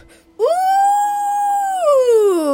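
A single loud dog howl swells up quickly, holds a steady wavering pitch for over a second, then slides downward as it trails off, with no talking.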